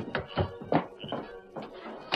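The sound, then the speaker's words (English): A jail door is opened by a man who has just dismounted from his horse, with a short run of wooden thunks and clicks from the latch and frame, moderately loud, with no one speaking. “the masked man returned there a second time, dismounted, and opened the door.”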